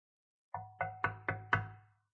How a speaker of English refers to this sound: If you have a metal door, it sounds like that. And you're knocking.